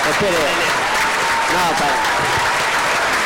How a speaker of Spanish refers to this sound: Exacto, muy bien. Aplausos.